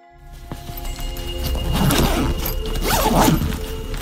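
Bags being hurriedly packed: fabric rustles and thumps, then a couple of quick zippers pulled shut, all fairly close with a low background hum and no talking.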